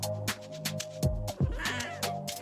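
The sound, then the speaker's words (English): A pet cat meows a few times, short drawn-out cries with falling pitch, separated by brief pauses and soft background noise. No one speaks. “My cat says thank you so much to everyone for an amazing season 3 of Dirty Girl Podcast.”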